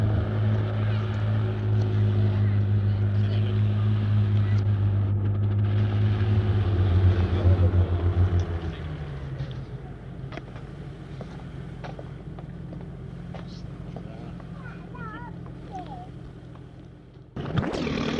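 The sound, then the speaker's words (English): A small single-prop plane engine warms up about 300 yards away, a steady low, buzzing drone that holds for several seconds and then drops back to a faint rumble under a light breeze on a warm, sunny evening. “The plane you can hear now is about 300 yards away, just warming up.”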